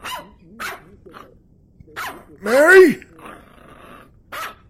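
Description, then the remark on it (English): A dog gives one loud, sharp and drawn-out bark, with a person briefly calling out before and after it. “What is that dog barking at?”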